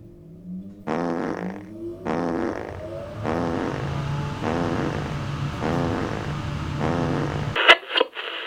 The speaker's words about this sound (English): Order now and we'll throw in this enormous machine that farts on a wheel of cheese.